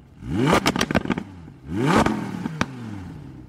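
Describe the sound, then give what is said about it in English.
A combustion engine revs up twice in quick succession, each rise climbing in pitch with sharp crackling pops and clattering bursts before settling to a rough idle. Loud, with no voices. “But even if the world doesn't ever develop fully renewable grids, well, electric vehicles are still going to be better than exploding engines.”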